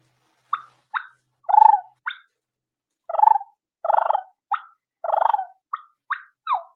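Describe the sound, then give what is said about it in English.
Turkey hen clucks and purrs made as a call while turkey hunting: sharp single clucks scattered among longer rolling purrs, an irregular run of about a dozen calls, clear with silence between them and no talking. “So without further ado, some clucking and purring for you.”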